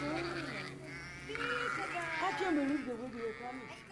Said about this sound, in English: Watch the shepherd go. And watch what the sheep do. Follow.